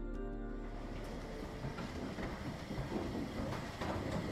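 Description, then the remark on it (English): A train to Dublin rumbles steadily along the tracks, its wheels clacking over rail joints at irregular intervals beneath a constant low, heavy roar. Fairly loud, with no voices. “The players gathered and feathered that Saturday morning to catch the train to Dublin.”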